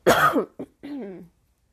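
A loud, harsh cough, followed by a short second hack and then a brief throaty, voiced clearing sound before silence.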